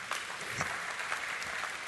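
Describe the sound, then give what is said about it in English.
A church audience claps steadily during a sermon, a dense, even patter of many hands with no pauses and no talking over it. “Well, see, I'm getting claps in here.”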